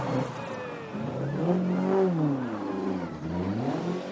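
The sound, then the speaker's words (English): A Ford Escort rally car, the first of the Escorts, driven by Phil Collins from Wales, revs hard and climbs in pitch as it speeds past, the whine rising and falling with gear changes, loud with no voices. “This is the first of the escorts.”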